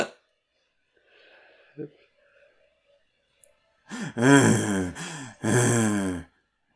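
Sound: heavy breathing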